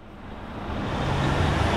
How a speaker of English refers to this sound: When trucks rumble through Bayside San Diego neighborhoods, some see economic vitality. But the economic payload comes with a cost that's frequently paid by neighborhoods like Barrio Logan.